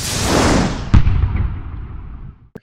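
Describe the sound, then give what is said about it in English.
The sonic boom of a paper airplane depicted as a jet breaking the sound barrier: a deep, broad rumbling roar swells and then splits with a sharp booming crack, trailing off into a fading rumble before a brief final snap. No voices are heard. “So the airplane flies across the screen and then you hear the sonic boom of it breaking a sound barrier.”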